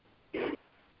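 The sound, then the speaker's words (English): A single sharp sneeze bursts out loud, lasting about a quarter second, with quiet background before and after and no talking. “Bless you.”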